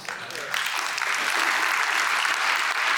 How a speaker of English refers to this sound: I think we got a couple people that came out tonight. So, I hear it. There's a good applause there. I'm excited.